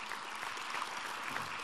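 A crowd applauds steadily, a dense wash of many hands clapping at an even, sustained level with no voices rising above it.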